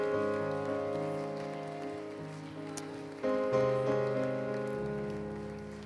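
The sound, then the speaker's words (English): A crowd claps in praise to God during a worship service, a dense, steady patter running continuously under sustained organ-like chords that shift pitch a couple of times. “Come on, if you're thankful for the goodness of God over your life, can you give him a hand clap of praise today?”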